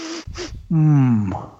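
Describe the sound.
A voice mimics a lion's head sniffing: two quick, breathy snuffs, then a drawn-out low voiced rumble that slowly drops in pitch.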